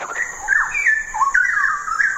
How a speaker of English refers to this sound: The city is Singapore, and the bird is the straw-headed bulbul.